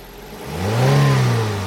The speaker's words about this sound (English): Okay, should we get our seatbelts on and rev up the engine?